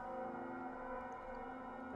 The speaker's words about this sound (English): The radio is picking up signal we can't explain. It sounds like a high-pitched whine, almost like whale song, but it's the wrong pitch completely.